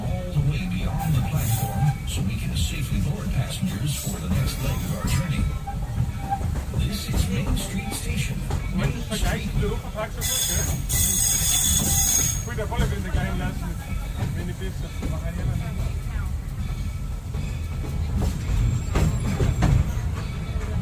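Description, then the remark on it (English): A train rumbles steadily as it slows toward a stop, with a loud burst of hissing air near the middle and indistinct voices murmuring underneath. “Please remain seated until the train comes to a complete stop.”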